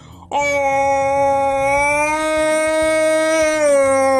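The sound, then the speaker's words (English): A single loud howl by a man imitating a jungle yell as a voiceover demonstration, held on one steady pitch for about four seconds and lifting slightly at the very end, with no talking around it. “Here he is doing Tarzan.”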